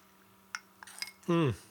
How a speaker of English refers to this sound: And so I need a sip of kombucha and then we'll come back to this.